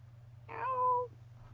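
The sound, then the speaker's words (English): A single drawn-out cat meow, clear, lasting about half a second over a low, steady background hum. “Oh, is that a cat meowing?”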